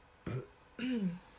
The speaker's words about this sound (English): Hey, it wouldn't be my podcast if I didn't have belching on here. When I tell you I get, like, red cheeks every time, I'm so embarrassed. Oh, my God. Every single time.